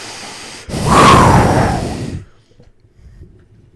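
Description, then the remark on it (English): One heavy breath blasts straight into the microphone, a loud airy rush lasting about a second and a half before cutting off, leaving faint low rustling and no voices. “You're breathing really heavily in.”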